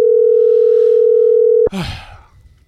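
A steady, loud telephone tone hums continuously for over a second, then cuts off abruptly with a click, followed by brief rustling noise as the line picks up.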